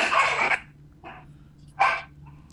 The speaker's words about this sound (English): the devil dog is here, folks.